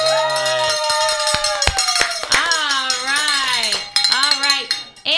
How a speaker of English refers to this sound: We also get to ring the bell for five pledges. Have we done that yet? Let's do it. Here it goes.